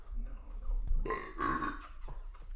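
A single drawn-out burp after drinking shots, loud and croaky, rising into a rough, tonal belch that lasts about a second before trailing off, with low rumble underneath.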